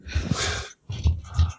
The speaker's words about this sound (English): Roll away from the microphone. Yeah, your mic's a little close to your nose there. I think we're hearing your exhale.